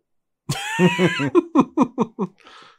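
A man launches into a loud coughing fit: a harsh opening hack followed by a rapid string of about six short, rhythmic coughs that trail off into a breathy rasp.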